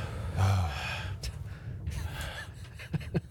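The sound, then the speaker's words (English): Someone imitates wind noise with a steady, heavy, breathy exhale that whooshes on for about three seconds, ending in a few short puffs. “It sounds like someone's breathing heavily without, you know, just exhaling the whole time.”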